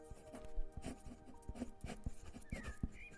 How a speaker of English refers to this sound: But he was only truly calm and content when he was sat in the sun, lying on his belly and breathing softly, with a pencil and pad in his hand, sketching.